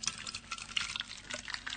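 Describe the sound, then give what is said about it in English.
Water is poured into a little plastic bottle to raise the note blown across it, making a quiet, irregular run of splashy gurgles and trickles with no one speaking. “Now, we all know that if I put a little bit of water in the bottle, we expect the note to go up. So, gluck, gluck, gluck.”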